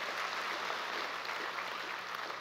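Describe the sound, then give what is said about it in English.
A church audience at Foothills Church applauds steadily for people who shared a testimony, a dense wash of many hands clapping at once, holding an even level without pauses for the whole stretch. “Would you give those folks a round of applause for sharing part of their story?”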